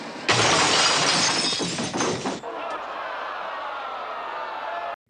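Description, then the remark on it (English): A television showing the Super Bowl is kicked in by Gus the mule in a film, and its screen shatters in a loud, bright crash of breaking glass lasting about two seconds, followed by a steady, quieter hiss of noise that trails on. “When Gus sees the Super Bowl and sees the camera zooms in on Andy, saying oish, so of course Gus then kicks the TV.”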